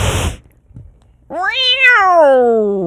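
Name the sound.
cat meowing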